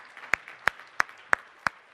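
A short round of applause for a volunteer coming up to the front, made of five sharp, evenly spaced claps in a steady rhythm, each crisp and bright, with only faint background hiss between them and no talking.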